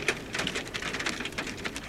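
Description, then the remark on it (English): Hail and rain pelt down hard on a deck and garden in a dense, steady clatter of countless small impacts, the hail bouncing off the deck, fairly loud, with no voices. “Hail is bouncing off the deck and pinging back at Thor's snout under the patio table.”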